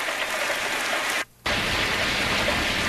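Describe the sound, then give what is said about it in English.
Steady, dense rain of a rainstorm hisses loud, with a brief drop to near silence partway through before the downpour resumes. No voices are heard. “Well, there's some rain. Rainstorms.”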